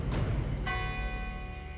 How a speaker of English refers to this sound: Then, as the bell in the church tower struck four, the shadow quivered slightly, becoming so thin and angular that it almost ceased to be a man at all.